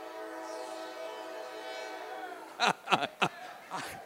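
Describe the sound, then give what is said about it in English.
A freight train's horn blows in a long, steady chord for a few seconds, then fades as several brief, louder bursts of voices break in over the passing train. “Let's let the train pass.”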